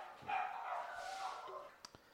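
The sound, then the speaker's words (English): Dogs sound off, a drawn-out, muffled yowl lasting over a second, followed by two short, sharp yips. The whole thing is faint, with no talking. “Sorry, the dogs are freaking out.”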